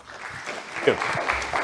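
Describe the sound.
A burst of audience applause as a guest doctor is called to come on down, dense steady clapping from many hands at moderate loudness, with a few voices mixed in underneath.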